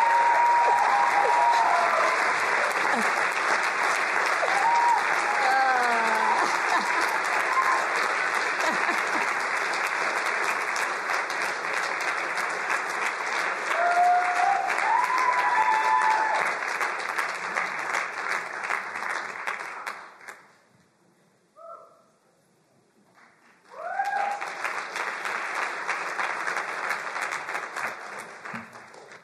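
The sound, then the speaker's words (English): Sustained, loud applause from a large audience at a chapel recognition and honors celebration, lasting about twenty seconds, briefly dying away, then swelling again in a second burst, with faint voices and cheers mixed in. “Would you come, give a round of applause?”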